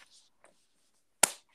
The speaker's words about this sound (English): Stop clapping in the mic. Stop clapping away from the mic.